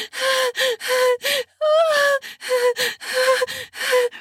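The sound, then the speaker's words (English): Heavy, voiced panting from a woman while her clitoris is being sucked, about eight quick gasping breaths in a steady rhythm, with one longer drawn-out moan-like breath in the middle; no talking. “I'm panting so hard as you suckle my clit.”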